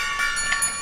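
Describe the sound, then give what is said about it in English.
A metallic gong rings out as it is knocked over, with a shimmering, sustained tone and dense overtones, fairly loud and steady for under a second, with a slight swell midway and no voices. “Just knocked the gong over.”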